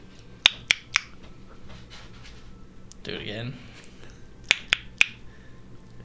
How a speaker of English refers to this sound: What's up, little fella? Tap the pot, same rhythm.